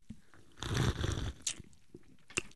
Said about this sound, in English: Okay, so we got to take a sip. Yes, cheers. Cheers. Cheers. Oh, yes. And then we take a sip and let them hear it.